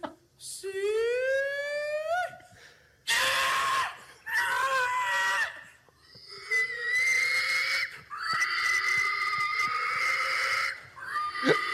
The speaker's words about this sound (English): And first, I want to find a video of this is the video that I found. It's like the 2010 Illinois State Fair hog calling.